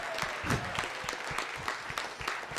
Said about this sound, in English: Let's just give a round of applause for us.